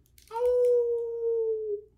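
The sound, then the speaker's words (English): A person imitates a wolf howl: one steady, drawn-out tone lasting about a second and a half, sliding gently downward in pitch before trailing off, fairly soft. “Why do you howl all the time?”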